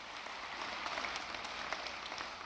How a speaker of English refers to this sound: Let's stand and give the Lord a clap offering today. He deserves it, doesn't He?